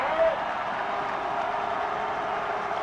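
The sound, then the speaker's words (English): A large stadium crowd at a football game roars steadily and loudly for the whole stretch, a dense wash of cheering with no breaks and a brief bright tone near the start. “Crowd has been in full throat all night.”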